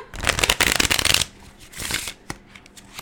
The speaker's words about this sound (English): Not my best shuffling, okay?